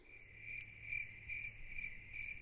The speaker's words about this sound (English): I wish I had a cricket. I'm going to put a cricket sound effect in there. That's what I'm going to do for that one.